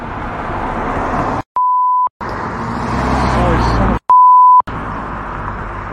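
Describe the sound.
Two loud, steady censor bleeps about two seconds apart cut sharply into talking voices, with road traffic rumbling in the background and a car going by between the bleeps.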